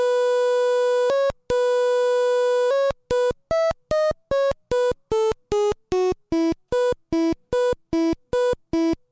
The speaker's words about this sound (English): I did find when I was going through the soundtrack that there's a track that plays for the Game Boy printer.